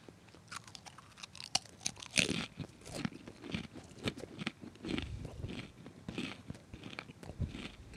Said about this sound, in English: It's just someone having a good time. It's like seeing a golden retriever be happy. Like, I'm just eating pretzels and I'm happy.